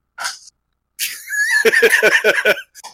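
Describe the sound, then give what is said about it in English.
A dog named Chica, called Raid Puppy, makes noise: a brief snuffly burst, a pause, then a longer run of rapid, rhythmic yelping whines with a short final snort, and no talking. “Yeah, what is the dog's name? Chica, but everybody calls her Raid Puppy.”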